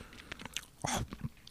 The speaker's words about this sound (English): But I can't think of anything less relaxing than a guy chewing his popcorn really loudly.